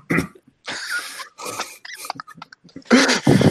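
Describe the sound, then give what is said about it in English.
A loud coughing fit: a string of harsh, rasping coughs in irregular bursts, with choppy throaty sputters between them and two forceful hacks at the end. No speech. “What, yeah, I need another shot of cough syrup.”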